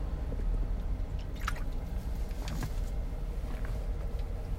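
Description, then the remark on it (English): Quiet sips of water with a couple of brief wet slurps and swallows, set against a steady low rumble in the background. “So let me get a sip of water here before I get into my content.”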